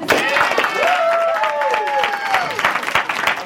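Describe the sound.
An audience at a SALT event claps for a presenter in a dense, steady burst of applause lasting a few seconds, with a couple of voices cheering and whooping over the clapping.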